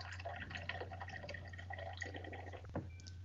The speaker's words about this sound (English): I'm hoping that's another drink. It sounded like somebody was pretty heavy. No. Sorry, it was. I was topping off my water.